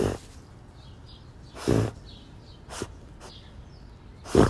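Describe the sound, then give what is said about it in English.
A female dog snuffles in short, breathy bursts while trying to find something in the yard, about five irregular snorting sniffs with quiet gaps between, the first and last a little louder. No one speaks. “That's her trying to find something in the yard. She makes weird noises all the time.”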